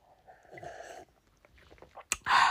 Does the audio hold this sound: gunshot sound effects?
no